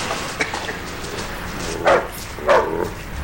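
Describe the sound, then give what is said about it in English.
A dog named Sarge, an untrained stray, barks twice in quick succession, short sharp woofs about half a second apart, with a faint yip before them over a steady background hiss. “You're not thinking of changing dogs, are you”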